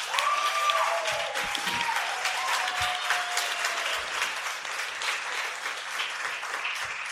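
A crowd applauds steadily for several seconds, a dense wash of many hands clapping at a fairly even loudness, with a faint whistle-like tone briefly audible near the start.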